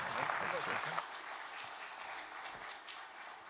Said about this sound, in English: would you welcome him on the stage this morning with a big round of applause? Please welcome him up.